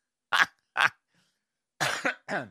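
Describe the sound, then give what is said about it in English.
A person coughs harshly four times: two separate coughs, a short pause, then two more in quick succession, with no talking. “He says, coughing his lungs up.”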